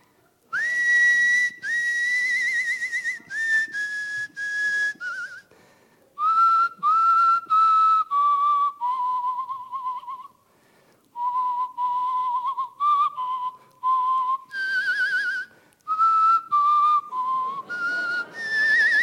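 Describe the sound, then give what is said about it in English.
A person whistles the carol "Away in a Manger" alone, clear, in steady phrases of sustained and stepping notes separated by brief pauses, with no talking. “I'm just going to do a snippet because it's whistling.”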